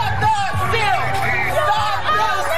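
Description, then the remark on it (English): A dense crowd of thousands of largely maskless Trump supporters rallies in the streets of Washington, D.C., against the election result, roaring with overlapping shouts, cheers, yelling and chants of "This isn't over", a steady loud wall of many voices with occasional whoops rising above the babble. “The largely maskless crowd echoing his baseless claims about widespread voter fraud, chanting, "This isn't over."”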